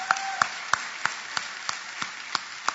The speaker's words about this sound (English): Can y'all give him a hand clap?